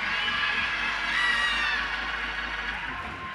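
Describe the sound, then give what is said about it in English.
An audience, urged by the speaker to scream and holler, screams and hollers together in a sustained, loud roar of overlapping high-pitched shouts and whoops that swells in the middle and eases slightly toward the end. “Somebody scream like you're already on the top. Somebody holler.”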